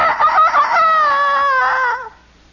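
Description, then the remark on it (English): A single drawn-out rooster crow done by a human voice, loud, rising then sliding down over about two seconds before cutting off into quiet. “He would crow like a rooster on the south side of Chicago in an overheated apartment that sounded...”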